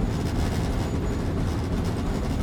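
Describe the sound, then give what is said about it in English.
A steady, loud low rumble of a train rolling along the rails, a dense continuous roar with faint rattling and no voices. “Getting on the train, yes.”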